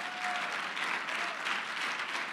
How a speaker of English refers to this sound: If you're a whosoever, would you clap your hands right now?